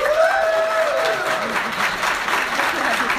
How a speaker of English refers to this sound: So we're gonna do this by your applause.